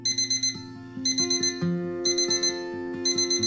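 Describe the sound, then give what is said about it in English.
A black digital alarm clock on a wooden bedside table beeps in quick bursts of rapid, high-pitched electronic pulses, repeating about every second, with soft sustained music-like tones underneath and no voices. “The black color digital alarm clock beeped on a wooden bedside table.”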